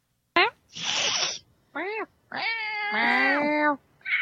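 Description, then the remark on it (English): A person imitates a cat's distress call: a sharp hiss-like burst followed by several rising and falling wailing meows, loud, with no other talking. “I make cat noises to attract my cats when I can't find them. So I make a cat distress call, which is”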